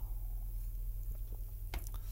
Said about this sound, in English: Let me take a drink of water, make sure I've got the fuel going on here.